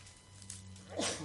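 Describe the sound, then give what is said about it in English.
A single quick sneeze bursts out near the end, a sharp, breathy blast over a low, steady electrical hum that runs throughout. “Bless you.”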